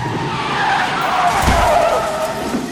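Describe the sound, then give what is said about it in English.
A DeLorean car skids loudly to a halt, tires squealing in a sustained, strained screech over a low engine rumble, continuous for a few seconds. “Oh, pinned under a fucking car. Where'd that fucking car come from”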